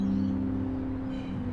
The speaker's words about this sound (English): There's a range of sounds waking us up as they resonate through that morning air. The birdsong up against the rumble of commuters and cars, and the occasional 57 tram screeching around that corner reminds me of where we are.